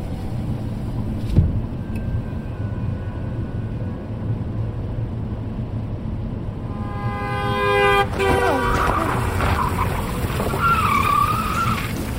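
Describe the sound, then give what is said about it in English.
Steady low road rumble from a moving car, then partway through a harsh, droning buzz rises as the tires roar over a highway rumble strip and the car shudders, lasting until the end. “The car shudders and a roar comes from the outside.”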